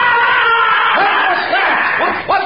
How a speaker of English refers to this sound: … disappeared behind those bushes over there, and a moment later I heard that scream